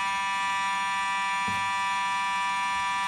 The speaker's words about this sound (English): What is that noise? Unfortunately, we're experiencing an alarm here. The fire alarm went off.